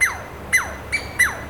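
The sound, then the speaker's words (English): A pair of Douglas squirrels giving sharp territorial calls at the recordists' presence: four quick, evenly spaced cries, each starting with a harsh burst and sliding down in pitch, with no talking. “Here's a pair discussing our presence right now.”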